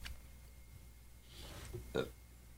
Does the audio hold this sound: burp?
yes